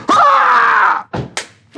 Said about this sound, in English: Unexpected for him too, as he landed awkwardly, slap, on his back.